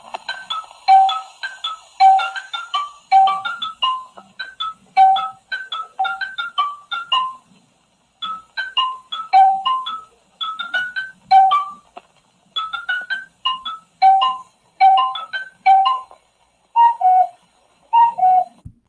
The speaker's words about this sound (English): Now, that unique version of the Laurel and Hardy cuckoo theme comes from the movie that I am going to discuss today, their 1935 feature film, Bonnie Scotland.